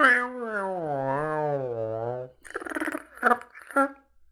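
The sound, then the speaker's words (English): A long, drawn-out meow from a cat named Pebbles that wavers and sinks in pitch, sounding like a human voice imitating a cat, followed by a few short, breathy, hissing bursts. Fairly loud. “And of course, we have Pebbles, my cat.”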